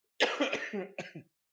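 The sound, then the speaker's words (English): A raspy burp rolls straight into a short cough, followed by a second quick cough burst, all within about a second, with no talking. “I'm burping into coughs right now.”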